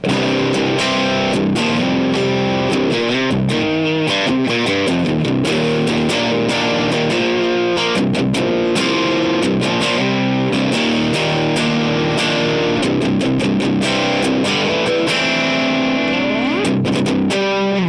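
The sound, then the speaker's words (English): Heavily distorted electric guitar played through a Cortex amp modeler as a reference tone, with loud, sustained fuzzy chords and riffs ringing out continuously for the whole stretch, with no voices. “Okay, so here we have our reference. Here's the Cortex.”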